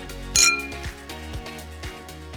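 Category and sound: household object, wine glasses clinking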